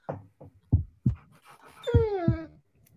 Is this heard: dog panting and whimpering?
yes